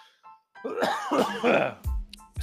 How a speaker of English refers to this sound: Excuse me for the coughing.